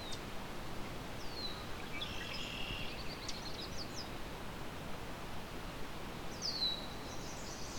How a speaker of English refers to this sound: There's a yellow warbler. Yellow warbler uses fairly diverse habitat, anywhere with an open area.